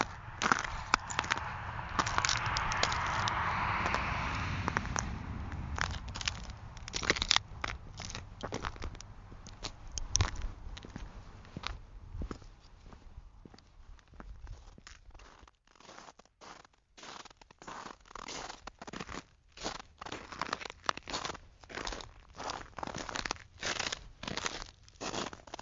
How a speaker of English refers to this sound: Quite different from being in Three Forks, Montana, where I walked on new ice near the headwaters of the Jefferson, Missouri, and Gallatin rivers.